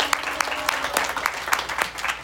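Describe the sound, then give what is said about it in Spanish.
A crowd claps steadily for young girl mini candidates, with dense overlapping hand claps and a few sharper individual claps standing out, moderately loud, with no voices over it. “Recibimos y les pedimos un aplauso para nuestras mini candidatas”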